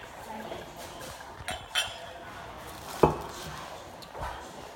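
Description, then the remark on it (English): A drinking glass of rum is picked up and set against a hard surface, giving a couple of sharp clinks and knocks over a quiet background. “Can you just grab my glass real quick?”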